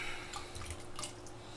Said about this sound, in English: So I'm going to take my wassail and I'm simply pouring it right over the bourbon to mix it up.